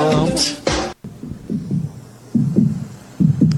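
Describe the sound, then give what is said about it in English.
A deep, muffled drum pulse thumps in paired beats like a heartbeat at the intro of a song, repeating steadily after a brief burst of music at the start, with no other instruments. “Kind of like a heartbeat instead of a drum beat, but you know.”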